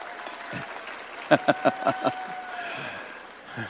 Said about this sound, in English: How many people, by clap of hands, how many people are ready to go home?